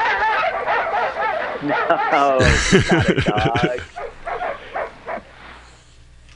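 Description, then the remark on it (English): A dog barks loudly in a quick burst of several harsh yaps, with people talking before and after the barking, in a recording of Elizabeth Taylor. “that dog is still alive. Hates Liz Taylor.”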